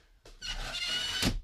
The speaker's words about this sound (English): Ooh. Oh. That was not a great noise. Dude, it's a terrible window sound. So we're still in the camper.